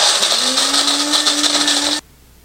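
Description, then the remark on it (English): A Cuisinart electric coffee grinder grinds coffee beans for one cup, whirring loudly and steadily for about two seconds, a harsh buzzing motor with a low hum that rises slightly in pitch, then cuts off abruptly into near silence. “And yeah, I'll just grind enough for my cup of coffee.”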